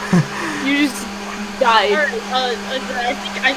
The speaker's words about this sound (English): I think the vacuum cleaner was turned on or something, I don't know,